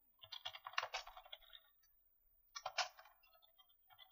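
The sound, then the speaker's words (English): Two quick bursts of typing on a computer keyboard, rapid clustered keystrokes with a short pause between them, fairly soft, with no voices, as someone looks up a dice roller. “What are you doing? Writing some code? I'm trying to look up a dice roller.”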